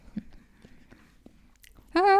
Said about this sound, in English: But the chewing is like a 0. So that just makes it a terrible apple.